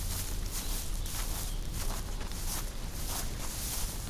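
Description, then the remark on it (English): Steady footsteps crunch through dried-up plant life in a meadow, each step a crisp rustling burst at an even walking pace over a constant low background hiss, with no voices. “As I walk through the area, since temperatures have risen, I often hear my feet crunching on dried up plant life in certain patches of the meadow.”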